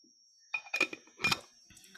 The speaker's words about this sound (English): drink some water.